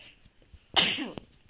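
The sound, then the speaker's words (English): A single sharp human sneeze bursts out, a quick explosive blast of breathy noise that fades within half a second against a quiet background. “Excuse me. Mid-podcast sneeze.”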